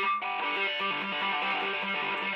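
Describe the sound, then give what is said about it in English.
A distorted electric guitar plays a quick run of legato notes, each new pitch hammered on without a fresh pick attack, in an even, steady rhythm with no talking. “A hammer-on is just what it sounds like, so it's...”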